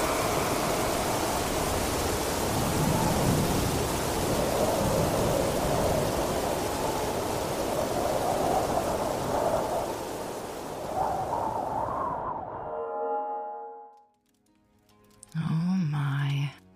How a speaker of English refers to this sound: You can see the maliciousness, the violence of this storm, and how unnatural it is. It's almost as if the sea is trying to eat the sky.